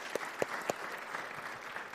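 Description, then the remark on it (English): Light, scattered applause from a small audience: a few sharp individual claps stand out early over a soft, steady patter of hands that continues evenly to the end. “You know, when we clap, man, we don't have to do like a golf clap.”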